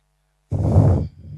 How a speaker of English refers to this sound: That's my breathing through my nose that's making that noise. Just to confirm that, right? I do have quite a nasal.